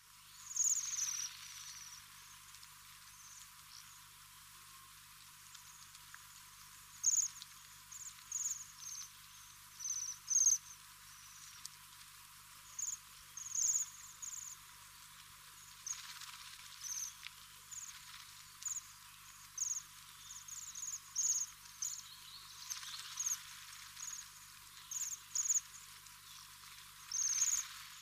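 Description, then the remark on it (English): High, thin buzzing trills of waxwings, repeated in short bursts throughout, some slightly louder than others, over a faint hiss with no voices. “Their most famous call is a high, rapid, buzzing trill of sharp notes, which can sound like a small bell.”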